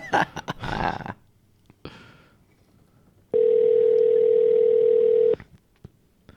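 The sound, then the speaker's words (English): A landline dial tone hums steadily and loudly for about two seconds, preceded by brief clattering handling noises, with no talking. “He's been waiting patiently by the phone, by the landline.”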